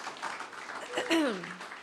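An audience gives a steady round of applause to welcome a speaker up, a dense wash of clapping throughout, with a brief gliding whistle-like tone sweeping down partway through.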